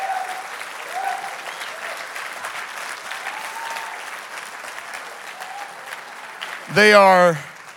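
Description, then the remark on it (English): A church audience stands and claps steadily for its pastors in a dense, even wash of applause, with faint voices mixed in, before a loud, rising whoop rings out near the end. “Would you stand up and just applaud them and tell them how much you love them right now?”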